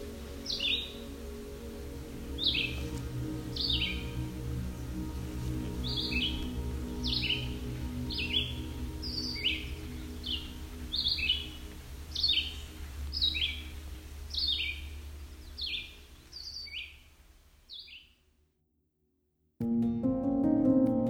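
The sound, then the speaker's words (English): Forest birdsong on the Bruce Peninsula in southern Ontario: a bird repeats a short, bright, high-pitched chirping phrase about once a second over a steady low rumble, then the sound stops briefly before a deeper tone begins. “This series is a small snapshot of this place, a week in the life, as told by the birds of the Bruce Peninsula.”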